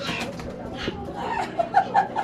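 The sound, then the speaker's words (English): Pet pigeons coo in a run of short, soft, repeated notes near the end, with faint calls of pet mynah birds mixed in over a steady background hum, in an attic flat in South Delhi, India. “in her attic flat, where a monkey, a family of mongoose, a German shepherd, chickens, minor birds and pigeons were all part of the family.”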